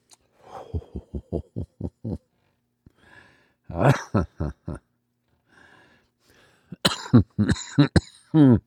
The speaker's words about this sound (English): Yeah, that's still an issue I have with concentrates, is the old cough that comes out there. And you probably haven't heard much of that because I tend to edit those out when we go to air with this.